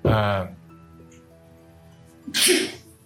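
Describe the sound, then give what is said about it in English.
Two loud sneezes about two seconds apart: the first voiced and throaty, the second a sharp, hissy burst, with a faint low hum in the quiet gap between them. “Bless you. Bless you.”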